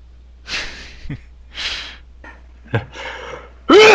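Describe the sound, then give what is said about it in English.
Close, breathy inhales and short sharp snorts build up over a few seconds, ending in a loud, voiced sneeze burst. “Bless you.”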